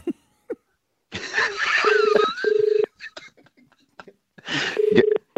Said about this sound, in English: All right, well, I'll give it a buzz. I'll get I believe I've got Russell Crowe's number here. Hang on a minute. And okay. Oh, it's ringing. Fingers crossed.